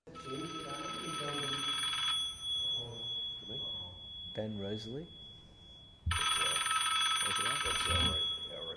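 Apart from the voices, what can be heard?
phone ringing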